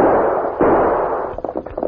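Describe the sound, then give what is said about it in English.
Gunshots fired from a bouncing open wagon at a pursuing rider in a Lone Ranger drama ring out over a rushing, noisy rumble: one heavy blast, then a quick, uneven series of sharper cracks. No voices are heard. “My gun's empty. Take mine.”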